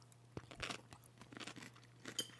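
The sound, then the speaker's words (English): A crisp, wet crunch of biting into a pickle during a pickle tasting, followed by several softer chewing crunches in an irregular rhythm, fairly quiet with a steady low hum underneath. “Oh, don't cover your mouth. People love the noises.”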